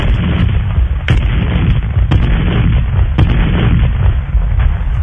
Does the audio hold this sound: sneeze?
no